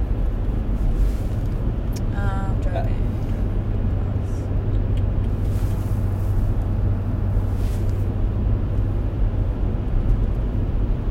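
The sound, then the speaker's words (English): Steady, unbroken low rumble of a car cruising along Highway 75, a small split-lane highway in southern Nebraska, heard from inside the vehicle, with constant road and engine drone and a brief faint chirp early on. “So right now we're in the middle of Nebraska, southern Nebraska.”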